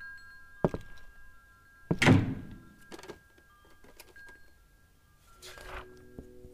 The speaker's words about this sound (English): Just as I was about to go, a door flew open upstairs.